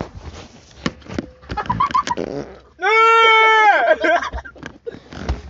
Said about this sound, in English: That was a nice fart.